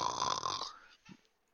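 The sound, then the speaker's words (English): A person imitates a snore with one loud, rasping inhale lasting about half a second, followed by a short, faint snort and then quiet. “For you snoring?”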